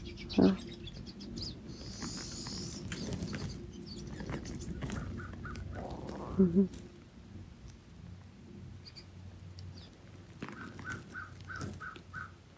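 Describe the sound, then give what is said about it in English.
A few bird calls ring out in short bursts, some harsh and caw-like, over a steady rushing background like rain and rumbling. No one speaks. “Taking in the sound currents as the birds come closer.”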